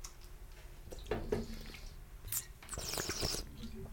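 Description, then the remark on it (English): Wet, gurgling bubbling like water in a bong, a run of irregular squishy pops and drips that swell in bursts around the middle and end, with no one speaking. “Dude, that sounded like a weed bong for weed.”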